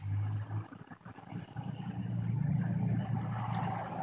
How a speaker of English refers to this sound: That was a truck.